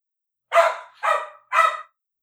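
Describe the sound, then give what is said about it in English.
A dog barks three times in a quick, even rhythm, each bark loud and sharp, with silence between and no other sounds. “Barking snakes are terrifying, by the way.”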